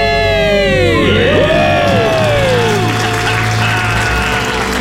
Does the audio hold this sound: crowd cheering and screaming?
yes